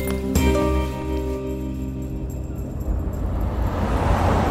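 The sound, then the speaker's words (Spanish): A car drives steadily along a road toward Paracho, a small town about two and a half hours away, its engine hum and tire noise continuous, with a brief clink near the start and no talking. “¿qué te parece si vamos a un pequeño pueblo a unas 2 horas y media de aquí en coche?”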